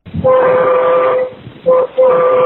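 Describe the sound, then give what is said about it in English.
A loud, blaring train horn fitted to a truck sounds: one long blast, a brief short honk, then another sustained blast, with low engine and road rumble underneath, heard from inside the truck cab while driving down the interstate. “I mean, you don't hear it when you think of, now think this guy's firing his train horn here. He's inside a cab driving down the interstate and this is what you hear.”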